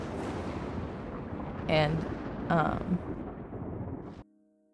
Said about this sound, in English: No, that was a thunder. That was thunder. Oh, that was thunder.